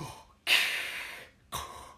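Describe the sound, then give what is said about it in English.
A person imitates the respirator breathing of a helmeted film villain: loud, hissing breaths, with a long drawn inhale-exhale followed by another beginning, and no talking. “Anyways, but the breathing.”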